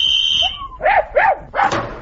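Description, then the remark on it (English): A tracker dog on a leash barks three times in quick succession, loud, following a brief high steady tone at the start; no one speaks. “Have you got a strong enough leash on that dog”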